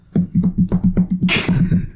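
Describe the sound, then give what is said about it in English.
Fingers tap a tabletop in a quick, steady patter of dull thumps, imitating someone's footsteps approaching a microphone, with a short burst of hissing noise partway through. “was tapping his fingers on the table in...”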